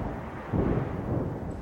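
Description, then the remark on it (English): A heavy storm roars steadily, with deep rumbling wind and a low, continuous churn that swells slightly midway. No voices. “Is the storm still at its increased volume? It is.”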